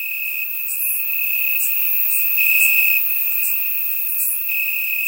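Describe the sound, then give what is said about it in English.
Crickets chirp steadily in a dense, continuous high trill, with brighter bursts pulsing irregularly over the top. No voices, just the even insect chorus throughout. “And the crickets are louder than the bishops.”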